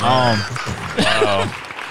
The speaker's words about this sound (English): It feels like a real applause. It feels like a real audience. Thank y'all.